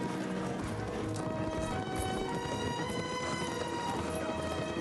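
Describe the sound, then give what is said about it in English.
Horse hooves gallop in a quick, continuous drumming rhythm, loud, with sustained musical tones running faintly underneath throughout, as riders race on horseback. “Don't fall off your horse, please.”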